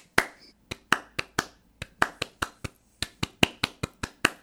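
A single person gives a soft golf clap, about twenty light claps in an uneven, lopsided 7/8 rhythm with irregular gaps and a short pause midway, with no one speaking.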